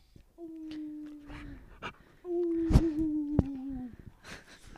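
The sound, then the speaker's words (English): A dog named Zuma lets out two drawn-out howls, each holding a steady, mid-pitched tone before sliding down at the end; the second is louder and longer, with a few sharp knocks and rustles around it. “Zuma girl, say some words. Say some words. You gotta howl.”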